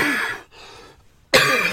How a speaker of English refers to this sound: Oh, you get to enjoy listening to me coughing.